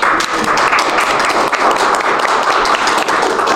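A crowd applauds steadily, many hands clapping in a dense, crackling wash that holds at an even, fairly loud level for a few seconds with no voices.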